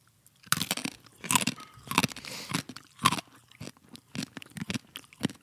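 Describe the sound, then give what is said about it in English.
Coffee beans being crunched between the teeth: a rapid series of sharp, crackly bites and grinding chews in uneven bursts, fairly loud, with no talking. “We're crunching beans.”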